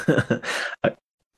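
throat clearing

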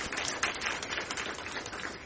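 audience applause

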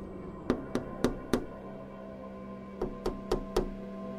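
tapping on glass

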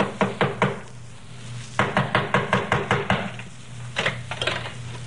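knocking on a door

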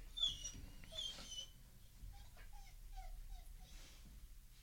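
dog whining

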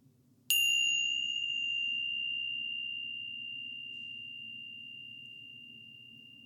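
meditation chime ringing

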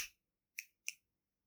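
finger snapping

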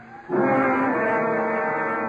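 ambulance siren

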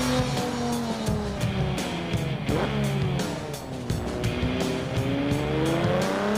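sports car driving

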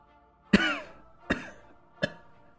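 coughing

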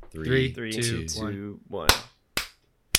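hand clap

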